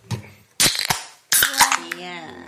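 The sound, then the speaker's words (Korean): A Kirin beer is cracked open: two sharp bursts of pop and hiss, each followed by a quick clink, with a voice murmuring over the tail end. “그러면 기린부터 따겠습니다.”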